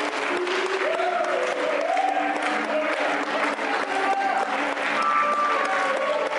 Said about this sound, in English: Keep clapping. Keep praising him. Keep praising him.